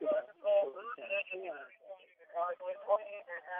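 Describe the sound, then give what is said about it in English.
Tinny, band-limited fire department radio chatter cuts in as interference, with a voice talking in short bursts over a narrow, crackly channel for a few seconds at moderate loudness. “Some paranormal interference right now. There's some fire department EVPs.”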